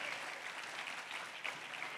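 An audience applauds steadily, a dense wash of many hands clapping at once that holds at an even, moderate loudness for the whole moment, with no clear voices rising above it.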